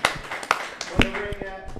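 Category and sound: crowd, people clapping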